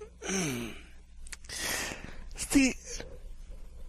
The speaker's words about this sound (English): Yawn. Excuse me. Very early morning here.